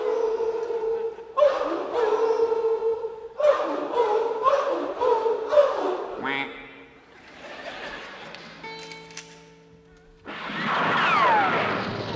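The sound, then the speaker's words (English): A loud chorus of 800 coyotes and a duck, yipping and howling in rapid, overlapping bursts for several seconds, followed by a steadier held tone and then a rush of broad noise. “performed tonight by 800 coyotes and a duck.”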